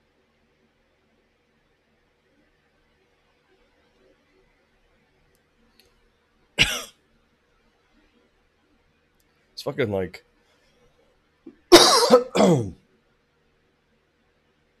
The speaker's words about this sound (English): like this cough kind of sucks, but it's nothing like the cough that I feel like I had the first time I had it. I think this cough is largely due to inhaling water from all of the congestion and discharge.